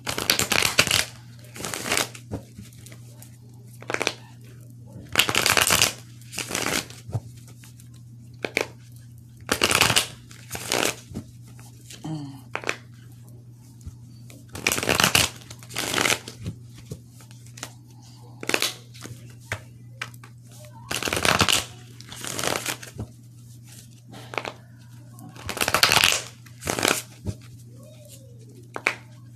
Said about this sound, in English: Now let's go to my love and lust Oracle cards here. Let me go ahead and shuffle.